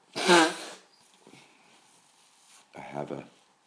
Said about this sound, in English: Excuse my sneezing.